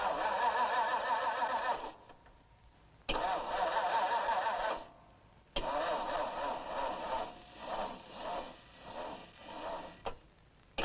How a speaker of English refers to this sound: Isn't that the quietest engine you've ever heard in your life?